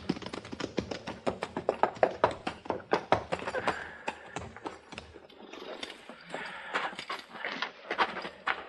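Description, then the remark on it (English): Hooves clip-clop in quick, uneven strikes on a hard floor as several horses are put into a barn, the clattering steady throughout with a faint voice murmuring underneath. “Put our horses in the barn here”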